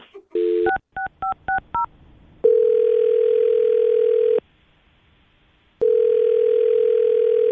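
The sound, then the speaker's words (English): A quick run of touch-tone dialing beeps as a phone call is placed to a man, then the call's ringing tone: a long steady ring, a pause of silence, and a second ring, loud and clear with no voices. “Let's call this guy and find out what happened, okay?”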